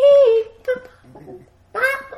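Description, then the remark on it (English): A person imitates a turkey gobble in three loud vocal bursts: a steady held note, a low gravelly warble, then a shaky, wavering cry to finish. “You do the turkey good.”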